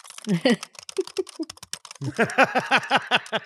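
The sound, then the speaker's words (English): A voice imitates typing a text on an iPhone keyboard with rapid, chirpy, pitched blips and a few sharp taps, first scattered and then in a quick steady run, fairly loud. “You got a weird keyboard on that iPhone.”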